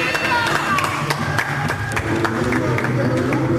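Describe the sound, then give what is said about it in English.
A stadium crowd at a grand final between the Cougars and the Falcons cheers on the Falcons in a steady, dense roar of many voices, with scattered claps and sharp shouts popping out of the din throughout. “The crowd's still cheering on the Falcons.”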